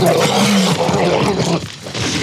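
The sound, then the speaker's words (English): A loud, rumbling dinosaur-like growl made from a dog playing with a rope toy, used for the T-Rex shaking and killing the gallimimus. It is continuous and snarling for about two seconds, with a brief dip before the roar surges back. No talking. “And of course, the T-Rex shaking and killing the gallimimus is just my dog playing with a rope toy.”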